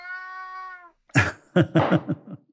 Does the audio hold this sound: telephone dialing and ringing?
no